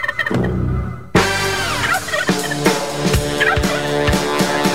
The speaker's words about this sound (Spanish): Bueno, entre pavos y pavitos, así nos encontramos